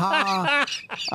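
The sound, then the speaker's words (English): A human voice imitates a strange owl call, loud, with a rising, strained hoot followed by a few choppy squawking bursts over about a second. “You're getting a weird owl.”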